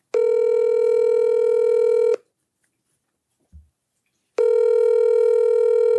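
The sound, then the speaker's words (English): A loud, steady electronic telephone dial tone sounds for about two seconds as someone makes a phone call, cuts to silence broken by one soft thump, then returns just as loud and even. “I got to make a quick phone call.”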